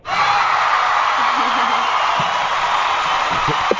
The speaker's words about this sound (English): Yeah, see, the crowd went crazy on that. Yeah. Did you hear the applause?